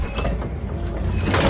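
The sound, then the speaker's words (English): Sliding doors to a high-security area glide shut behind people who have just stepped through, with a steady mechanical rumble and faint whirring hum, ending in a brief louder whoosh as they close, with no voices. “The doors slide closed behind us.”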